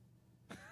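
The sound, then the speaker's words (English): A sleeping female dog, lying right next to the people talking, gives a single abrupt snort in an otherwise quiet moment, trailing into a thin, faint whine as it dreams. “The fact that she's comfortable enough to actually fall asleep and snore and dream right here next to us.”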